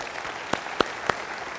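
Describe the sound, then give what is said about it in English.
Scattered applause: three sharp, evenly spaced claps ring out over a soft, steady wash of crowd noise, with no voices standing out. “Don't clap for Winter Park or Lake Highland.”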